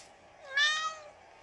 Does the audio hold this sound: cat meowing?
yes